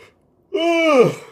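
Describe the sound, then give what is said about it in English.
A bored person gives a single drawn-out, voiced yawn, fairly loud, with a steady tone that slides downward at the end and then fades, preceded by a brief quiet pause. “Both of those bored me so much I yawned.”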